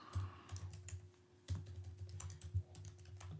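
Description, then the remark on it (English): Rapid, irregular clicking of keys on a computer keyboard as someone searches the internet, fairly quiet, with a steady low hum underneath and no voices. “Hang on. Here I'm typing.”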